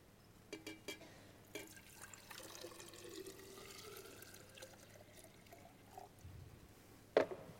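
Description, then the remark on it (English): Hot water and cold water from two containers are poured together, pouring and splashing steadily into a vessel, with a few light knocks early on and a sharp clatter near the end; no one speaks. “The water is joined.”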